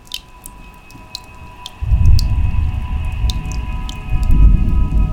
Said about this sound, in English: Of course it would start raining now.